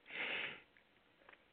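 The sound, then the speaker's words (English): One quick sneeze, a loud breathy burst lasting about half a second, followed by near quiet with a couple of faint small noises. “Bless you.”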